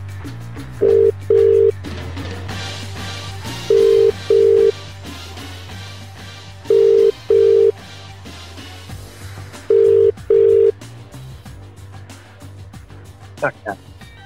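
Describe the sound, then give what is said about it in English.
A telephone ringing tone as a radio show calls a listener for its Caller of the Week segment. The tone repeats as four double bursts of a steady mid-pitched tone, each pair separated by a pause of about two seconds, over a continuous low hum. “Give him a bell now.”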